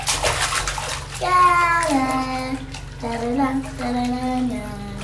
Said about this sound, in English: I'm in the bathtub with the water running.